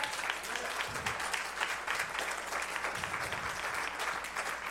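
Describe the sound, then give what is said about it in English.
A church audience applauds steadily at the end of a morning sermon. A dense wash of clapping holds at an even, fairly loud level for the whole few seconds, with no voices standing out. “You don't have to clap for this, but I also hope that this stepped on some people's toes, because honestly, saying it out loud is stepping on my own toes.”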